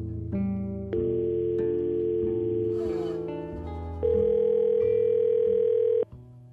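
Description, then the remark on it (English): Steady electronic telephone tones play alone over the line, held for long stretches and shifting pitch in a few abrupt steps, loud and continuous until they cut off near the end. “Your call has been forwarded to an automated voice messaging system.”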